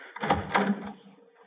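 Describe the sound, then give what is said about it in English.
A door opens with a brief rattling, mechanical clatter that lasts about a second before fading into quiet, as someone arrives at the door. No one speaks. “Excuse me, someone at the door.”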